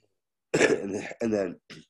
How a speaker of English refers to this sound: Sorry for coughing.